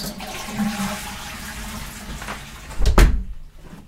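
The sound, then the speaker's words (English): A toilet behind a door linked to a studio flushes, its steady rush of water ending in a loud hollow clunk near the end before the noise quickly drains away. No one speaks. “let's paint you an audio picture of what's behind the second of 2 doors linked to the Fujicast main”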